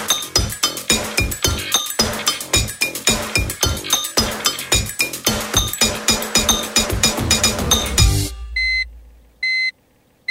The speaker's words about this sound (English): What sounds that? Not a chuck reversing. No, it's the sign that we've left the fridge open.